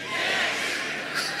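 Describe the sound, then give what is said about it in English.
An audience cheering together after the remark that Georgia got beat by Bama but it ain't over, a dense, steady roar of many voices with whoops mixed in, holding loud for about a second and a half with a small surge near the end. “You can cheer for that.”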